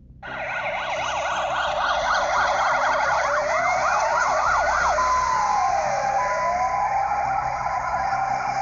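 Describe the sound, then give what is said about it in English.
A loud ambulance siren blares, starting with a rapid warbling yelp and then shifting into slower rising and falling wails, with a low engine rumble underneath, as the ambulance arrives to rush an injured person to the hospital. “The ambulance came and rushed me to the hospital.”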